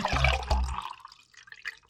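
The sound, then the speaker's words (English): A bottle of Dark Horse Cabernet wine is opened with two quick knocks and a low rumble, then the wine pours with a soft, bubbling gurgle that trails off. No one speaks. “The time where we all pop our tops off and relax.”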